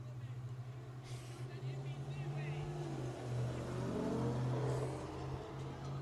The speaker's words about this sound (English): Something just drove by.